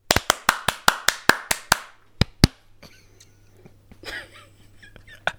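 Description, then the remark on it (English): A quick, steady run of about ten sharp, loud hand claps, a short pause, then two more claps, followed by quieter rustling and a faint voice. “You said one clap.”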